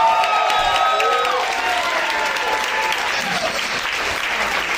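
A crowd bursts into sustained applause for co-host Brian Callen, dense clapping at steady loudness, with scattered whistles and cheers rising over it before it slowly begins to thin.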